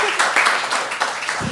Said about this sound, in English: Keep clapping. Great. That was fantastic. Thank you so much.